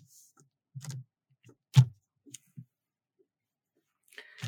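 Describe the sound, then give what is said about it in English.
Quiet sipping of wine from a glass during a tasting: a few soft clicks and wet mouth sounds spread over several seconds, with a brief slurp near the end. No one speaks. “But, look, let's have a little sip and see what we get here.”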